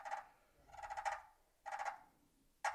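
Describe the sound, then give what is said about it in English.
Rolling, fluttery purrs played on a friction turkey call, three raspy bursts of uneven length, then a short sharp cluck at the end, a turkey contentment call made by dragging the striker near the center. No talking. “Purring and clucking is a contentment call.”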